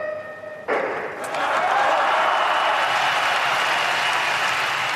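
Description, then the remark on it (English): A sudden thump, then a crowd erupting into loud, sustained banging, clapping and cheering that fills the rest of the moment as a dense, continuous roar. “The crowd are banging.”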